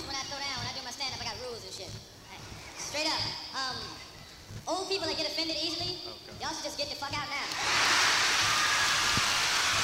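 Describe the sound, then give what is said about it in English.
People talk at first, then a loud, dense burst of audience applause breaks out and fills the final couple of seconds with steady crackling clapping. “Why is everyone applauding so much?”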